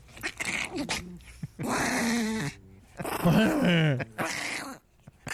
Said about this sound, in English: She likes to aggravate her, and she can touch her on her chest up between her front two legs, and she just goes bananas. The dog does. Listen. What is that sound? I never heard that as a dog. That's her growl.